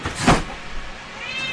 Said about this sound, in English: Jeez, that freaking cat. Man, and look, I don't care if she's on the podcast. She's really loud in my fucking ear is what I care about.